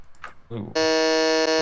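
A loud, harsh quiz buzzer blares steadily for about a second, a flat rasping tone rich in overtones, cutting in right after a brief snatch of voices, as a contestant buzzes in first to answer a quiz question.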